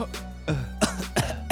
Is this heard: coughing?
yes